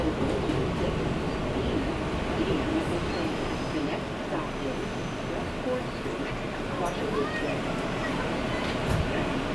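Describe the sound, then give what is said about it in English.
A steady, loud rumble fills the inside of a moving train carriage, low and continuous, with faint rattles and indistinct voices murmuring underneath. “My tendency is to want to talk to one of the people on the train, but no one is looking.”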